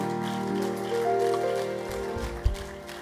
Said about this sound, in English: Give the Lord a mighty clap in the house.